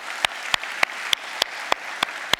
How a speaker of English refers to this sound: I would like to welcome anybody that's joining us online at our multi-sites or our micro-sites. Thank you so much for tuning in. Can we give it up? For them. Let's give them a little clap.